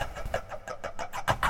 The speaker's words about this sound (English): Can other people hear us? Or is it just me? Everyone can hear it, yes. Drilling the lock.